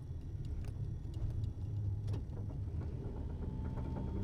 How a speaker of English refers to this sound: Here in Japan. Sorry, just going through some road construction in my neighborhood. Barely squeaked by.